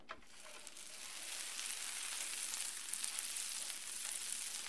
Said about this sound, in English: Once your butter is nice and sizzling, you can spoon a little bit of your batter right onto your griddle and let it cook.